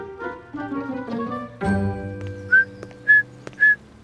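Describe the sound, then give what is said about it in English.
Someone whistles a bird-like call: three short, bright, high chirps, each sliding slightly upward, spaced evenly after a stretch of soft instrumental music that continues faintly underneath. “Hey …, what are you, a sparrow? It feels like spring, …. Perfect time for a little bird song.”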